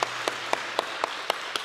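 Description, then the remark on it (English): Audience applause at a church service, for the preacher's wife, heard as seven sharp, evenly spaced claps in a steady rhythm, roughly four per second, over a low background hiss, with no voices. “So let's give her a round of applause for coming again today.”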